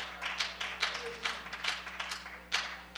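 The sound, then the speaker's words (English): A group of people clap their hands together in a loose, steady rhythm, the claps overlapping into a soft patter with a low hum underneath. “Yeah, and we can clap our hands because we can remember where we were.”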